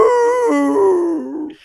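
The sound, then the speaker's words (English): Dogs howling in one loud, drawn-out wail that wavers and slowly slides downward in pitch before fading out. No one speaks. “I think all the neighborhood dogs are going to be outside.”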